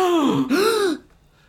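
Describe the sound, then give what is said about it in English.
A single voice gives a drawn-out, startled gasp that dips and rises in pitch over about a second, mimicking a shocked audience reaction, then fades to quiet. “Audience gasps.”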